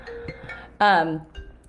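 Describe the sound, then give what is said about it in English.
A mobile phone's never-changed ringtone plays a short melody: soft steady tones, then a loud, bright chime that slides slightly downward and fades, followed by a faint final note. “Oh, yeah, I love that ringtone.”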